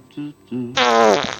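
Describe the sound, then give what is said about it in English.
A fart: two short buzzy toots followed by a longer, louder, raspy blast lasting about half a second, clear with no talking over it. “Somebody made Stallone farting.”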